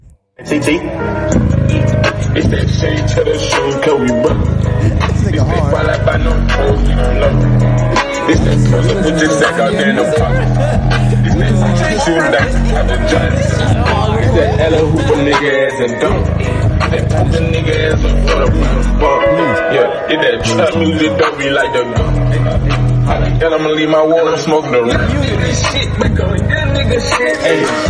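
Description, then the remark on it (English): A loud rap track plays continuously out of a car, with booming bass beneath a steady rapped vocal that runs the full half minute. “First of all, it was a snippet he was playing out of his car.”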